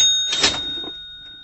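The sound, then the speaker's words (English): An old-fashioned cash register sound effect: a brief mechanical clatter of the drawer, with a bright bell ring that keeps sounding and slowly fades. No voices. “Old-fashioned cash register. Do you want the cash register one? Yeah. All right, here's the cash register one for you.”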